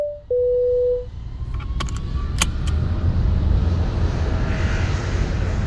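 A steady, loud airplane engine drone fills the cabin, opening with a brief electronic chime tone and a few light metallic clinks early on, with no one talking.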